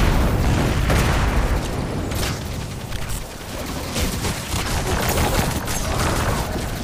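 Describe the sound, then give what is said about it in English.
A dense, rumbling explosion with crackling bursts and booms rolls on continuously and loudly, like a sustained blast in a video game, with no voices over it. “Wait for the explosion.”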